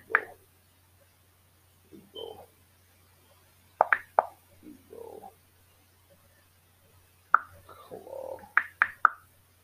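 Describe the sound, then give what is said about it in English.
Quick taps and clicks on a mobile phone screen, made while searching for a Hong Kong movie actor, come in irregular bursts, some in rapid clusters, with quiet gaps between and no talking. “Excuse my phone.”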